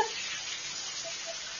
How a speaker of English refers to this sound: Shower. Water dropping. Oh, man. You know. A beautiful woman taking a shower.